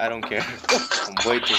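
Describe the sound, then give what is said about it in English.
A drinking glass is dropped and hits a hard surface with a sharp clatter and knock, landing without shattering, while people keep talking loudly right over it. “Okay, I dropped my glass.”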